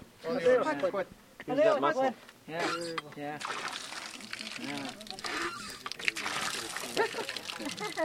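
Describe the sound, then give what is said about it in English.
Voices talk, then a steady rush of water starts up, splashing and gushing from the outlet of a water pump in front of a new Flexcrete-built home in the northeast corner of the Navajo Nation, as a 73-year-old woman tries it out, continuing loudly beneath the conversation. “… tries out the water pump in front of her brand new home”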